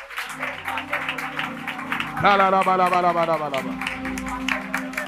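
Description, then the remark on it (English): A group claps hands while praying, in a steady, fairly quick rhythm, the sharp claps continuing throughout. Sustained low tones hum underneath, and a wavering voice rises over the clapping midway through. “Clap your hands and pray.”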